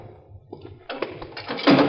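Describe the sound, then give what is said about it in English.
A heavy jail cell door closes as a prisoner is put into the cell: a rough, rumbling slide that builds over about a second into a loud, clattering metallic shutting at the end. “Okay, watch the door. In you go.”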